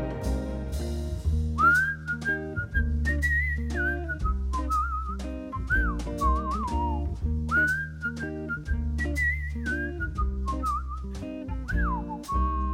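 A person whistles a clear, melodic tune along to a song, in sliding, repeated phrases over steady musical backing with a pulsing beat, sitting up front and fairly loud throughout.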